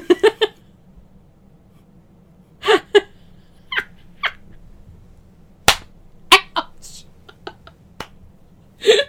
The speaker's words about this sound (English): Ouch. I'm gonna cut out the part of me slapping myself. So hard. I shriek like a baby.